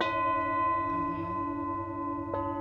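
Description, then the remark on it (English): Tibetan singing bowls struck to bring out their low tones and left to ring, their layered metallic tones sustaining steadily; a second, lighter hit near the end, made to bring out higher tones, adds a brief bright ping over the hum. No talking. “What I'll do is I'll just hit them, I will strike them to get the low tones, and then lightly hit them with this to get some of the higher tones.”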